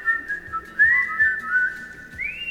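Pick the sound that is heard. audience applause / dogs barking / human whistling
human whistling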